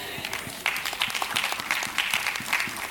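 A few scattered hand claps from a small audience, uneven and thin rather than a full round of applause, lasting about three seconds.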